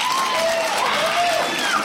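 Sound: audience clapping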